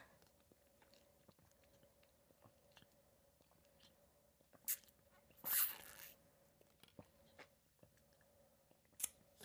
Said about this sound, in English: But I have a cup of water, so like, let's take a sip together.